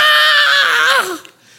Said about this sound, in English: And then something happened. We heard a scream.